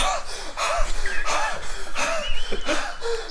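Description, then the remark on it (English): A voice imitates frantic, panicked breathing, as in a panic attack: quick, heavy gasps and ragged exhales, about six in a row, fairly loud with no talking. “And I'm just panic breathing, having a panic attack around the corner.”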